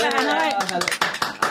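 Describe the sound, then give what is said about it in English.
At the Devon Business Show, a voice trails off as a short burst of applause for the production team breaks out, several hands clapping in an uneven, crackling patter that grows sharper toward the end. “Production team, give a round of applause.”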